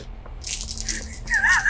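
A handful of seven six-sided dice clatters and rattles in a busy, bright burst lasting over a second, with a brief voiced sound rising over the end of the roll.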